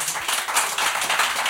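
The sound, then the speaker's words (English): An audience applauding: a dense, steady wash of many hands clapping at once, bright and fairly loud, with no voices over it. “For you to applaud that is almost an insult.”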